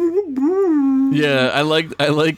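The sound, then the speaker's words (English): A person vocally imitates the howl of a creature seen in the animated series, like a Scooby-Doo lion: a wavering, drawn-out tone that turns into a louder, raspy, growling wail, performed for a couple of seconds. “Yeah, it was like a Scooby-Doo character. It was like a Scooby-Doo lion, yeah. It went...”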